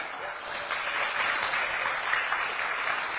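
Steady audience applause, a dense wash of many hands clapping at an even, sustained level throughout, with no voices standing out.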